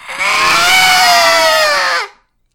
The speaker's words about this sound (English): There's a high-pitched scream out in the hallway.